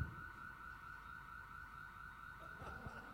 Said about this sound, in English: Okay, someone pressed on the alarm. There we go. Thank you. Now you don't even have to switch the alarm off. You just press a button.